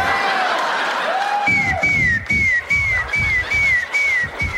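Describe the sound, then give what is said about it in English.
A whistling snot during a kiss: thin, high whistles that repeat about every half second, each sliding slightly downward, over soft, muffled breathy thumps. “Have you ever been making out with someone and one of you has a snot that's whistling?”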